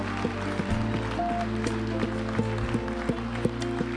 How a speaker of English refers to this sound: Come on, let's give Jesus another big hand clap of praise tonight.